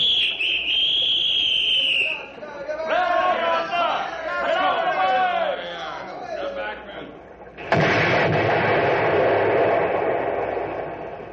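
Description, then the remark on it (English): A high warning whistle sounds, then people shout over one another before a sudden loud dynamite blast, set on a 10-second timer, erupts and rumbles on as the top logs are blown off the log pile, drowning out the voices. “All we did was blow a few of them top logs off the pile.”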